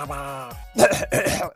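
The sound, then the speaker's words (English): A drawn-out voiced groan gives way to two or three harsh, raspy bursts of coughing and throat clearing as someone coughs up stuffing in order to speak, fairly loud, with no talk. “Sorry, I had to cough up some stuffing in order to speak properly.”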